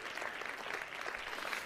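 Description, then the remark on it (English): An audience claps hands together, a dense, steady wash of many overlapping claps at an even loudness throughout, with no clear beat and no voices standing out. “Somebody clap your hands, say in Jesus' name.”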